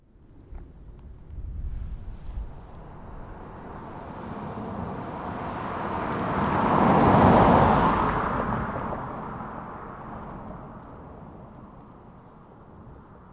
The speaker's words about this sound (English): Beth looked out of her bedroom window at our passing car.